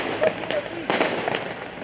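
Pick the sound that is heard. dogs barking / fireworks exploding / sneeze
fireworks exploding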